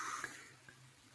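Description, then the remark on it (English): A faint, brief splash of liquid pouring and spilling, a soft hiss that tails off quickly, with a couple of small clinks or drips and no voices. “Sounds like spillage.”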